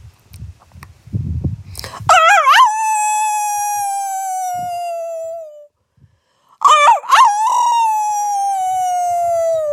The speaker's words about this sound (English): The dogs are barking. The coyotes will be next. The howls will come. And I will join them.